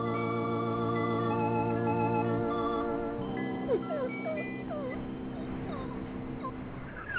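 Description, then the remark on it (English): A sick dog named Bono whimpers with several short, high, sliding whines that rise and fall, heard under sustained organ-like music that fills the background. “Your dog is sick, Father Albert.”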